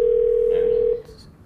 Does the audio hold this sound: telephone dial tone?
yes